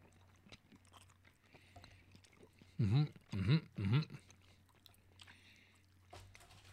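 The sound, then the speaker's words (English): Chewing on candy corn: three loud, crunchy bites land in quick succession, surrounded by quieter mouth noises and low background hum. “Sorry for all the chewing noises, but that's what we're doing. We're chewing.”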